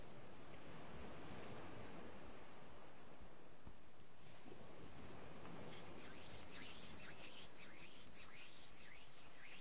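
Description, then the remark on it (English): Soft, steady wash of ocean waves on a shore, a continuous hiss that swells and recedes, growing brighter and fizzier in the second half as water rushes in. Quiet. “Can you smell the ocean?”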